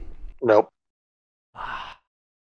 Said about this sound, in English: I'm breathing heavy over here. You know?